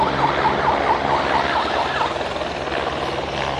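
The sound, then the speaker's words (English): A vehicle siren, sounded to herd wildebeest and to signal people to close the curtains, gives a quick run of rapid, evenly spaced yelping warbles, then fades into a steady engine rumble and wind noise outdoors. Nobody speaks. “He's using that siren either to herd the wildebeest a bit, but he's also using it to indicate when people actually have to close the curtains.”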